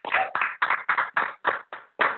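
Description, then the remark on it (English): An audience claps in unison, about eight firm, evenly spaced claps in roughly two seconds, fairly loud and with no voices over them. “Nah, come on, y'all gotta clap for that.”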